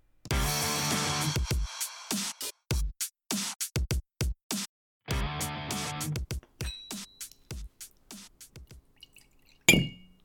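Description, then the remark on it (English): Ockentoshan whisky is poured twice in short gurgling bursts, surrounded by a run of sharp glassy clinks and taps, with one brief ringing chime near the end. Fairly loud, no voices. “Next to the glass. So which one's this, Nick? This is Ockentoshan. Very nice, thank you.”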